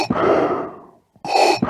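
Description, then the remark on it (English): A voice imitates heavy, rasping respirator breathing: a long, loud exhale that fades out, a brief pause, then another harsh breath, with no talking. “And then the two, like, slight variations of his breathing is when he's, like, obviously doing something physical.”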